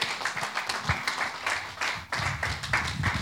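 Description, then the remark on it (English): A large church audience claps their hands together in a dense, sustained burst of applause, steady and fairly loud throughout, with a faint low rumble of voices underneath. “You didn't clap your hands, church.”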